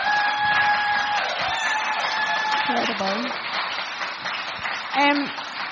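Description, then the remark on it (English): A crowd applauds steadily throughout, a dense wash of clapping at fairly even loudness, with a few voices and whoops rising briefly above it near the end. “I think we'll just have a quick round of applause there for that process.”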